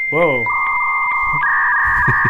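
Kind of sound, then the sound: machine, dial-up modem connecting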